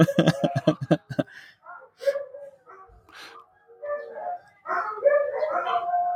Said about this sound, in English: It's just too much. There's no reason for that. No reason for the howling. Dogs are crazy.